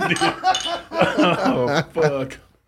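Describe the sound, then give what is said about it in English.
Glasses clink together in a toast, the bright chimes mixed in with lively voices talking and chuckling over them. “This is cheers to that, bro.”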